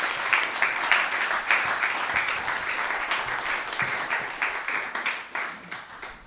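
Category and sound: crowd, audience round of applause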